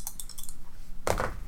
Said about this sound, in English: Yeah, I am going to take some luck, but I'm rolling with different dice.